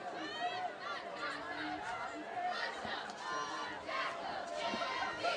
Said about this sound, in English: Beautiful night here. Lively crowd.